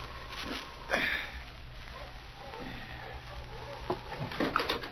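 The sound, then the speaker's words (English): Dogs approaching, with sniffing and panting and a soft patter of paws over a low steady rumble, growing a little louder and busier toward the end. “as his sharp ears caught the sound of approaching dogs.”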